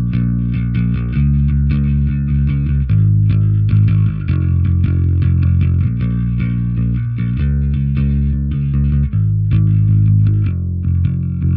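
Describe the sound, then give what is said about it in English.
A clean, unprocessed bass guitar played with a pick, going straight into an Aguilar amplifier without any pedals, plays a steady line of low, round notes that change every second or so, sounding flat with no effects, alone without any talking. “Without anything from the pedal board, just going into the Aguilar, sounds like this.”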